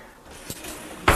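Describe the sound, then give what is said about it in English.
A kitchen silverware drawer is pulled open, with a soft click and then a brief, sharp rattle of cutlery shifting inside, with no talking. “Here is the silverware drawer. You've definitely heard me rattling in here a time or two.”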